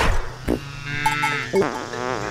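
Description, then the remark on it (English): A cow passing gas: a buzzy, sputtering toot with a wobbling pitch that rises and bends over a couple of seconds, fairly loud, with no talking. “They're created when we drive our cars and heat our houses and every time a cow toots.”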